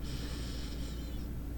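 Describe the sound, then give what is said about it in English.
A soft breath drawn in through the nose during a guided breathing exercise, lasting about a second, then fading into a low, quiet hum. No one speaks. “And just continue breathing steady through your nose now, if you're able to.”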